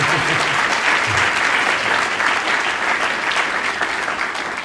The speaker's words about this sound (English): Okay, come on, just applaud it. Let's applaud it.